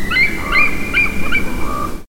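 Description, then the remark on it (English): An eagle gives a run of thin, high-pitched chittering calls, about five short bursts in quick, even succession, with nothing else around them. “much like how they tend to use hawk sounds for eagles, probably because eagle sounds aren't nearly as appealing.”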